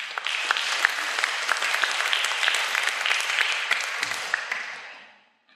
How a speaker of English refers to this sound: Give her a round of applause, folks.